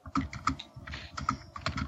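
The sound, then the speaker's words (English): Rapid, uneven clicking of computer keys fills the two seconds, a burst of typing with irregular taps and short pauses, no voices present. “Oh God, who's typing out looking for more musicals?”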